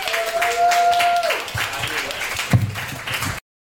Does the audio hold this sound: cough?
no